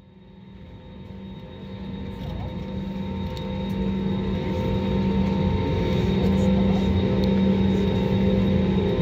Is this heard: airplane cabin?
yes